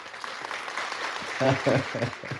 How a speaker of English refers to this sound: I like those claps, man.